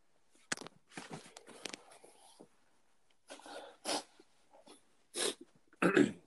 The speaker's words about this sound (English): I'm gonna step away from my microphone real quick. I gotta blow my nose. Hang on.